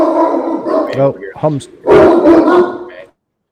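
A dog at a shooting range barks in a short series: a couple of quick, yelping barks followed by a louder, rougher volley lasting about a second before falling silent.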